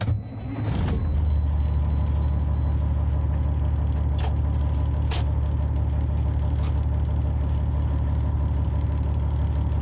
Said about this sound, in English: Processing. Engine starting. Please stand clear.